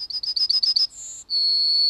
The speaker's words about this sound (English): This is the yellowhammer, a bird that they say sounds like it's saying a little bit of bread and no cheese. Now, I don't think that's true, but here's what it sounds like.